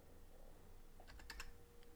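A short burst of keys being tapped on a computer keyboard used for playing Grand Theft Auto, five or six quick crisp clicks clustered together midway, over a low steady hum. No one speaks.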